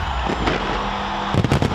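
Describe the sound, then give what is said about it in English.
London's New Year's Eve fireworks bang and crackle over a constant roar of background noise: a couple of separate pops, then a rapid flurry of sharp bursts near the end, fairly loud. “London's New Year's Eve fireworks became another example of people pushing past barriers to get in.”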